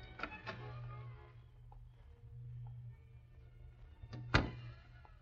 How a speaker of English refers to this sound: With a skeleton key, Britt effected an entrance to the back hall.